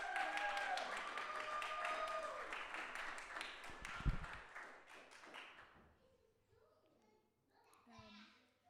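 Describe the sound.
A crowd claps for the next reader in a dense burst of applause with children's voices mixed in, the clapping swelling then gradually fading out, followed by faint murmuring.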